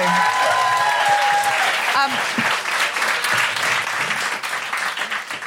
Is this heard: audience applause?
yes